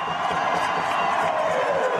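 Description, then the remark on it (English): A crowd of fans cheers loudly and continuously for player Alan Polito after his home debut, a dense wash of shouting and whooping voices that holds steady throughout with no pauses. “Make some noise for Alan Polito.”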